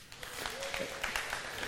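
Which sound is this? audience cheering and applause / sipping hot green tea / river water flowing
audience cheering and applause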